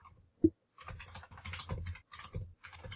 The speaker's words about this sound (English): You're very typey. Isn't that a nice keyboard? No, I'm logging into things with my long ass, you know. That's a travesty for recording.